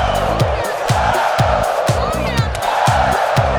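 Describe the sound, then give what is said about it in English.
A loud, dense Beantown (Boston) arena crowd at a wrestling match roars and cheers steadily, with sharp rhythmic beats like clapping or stomping landing about twice a second throughout. “feeling the energy of the Beantown crowd tonight.”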